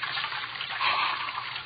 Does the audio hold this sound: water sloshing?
yes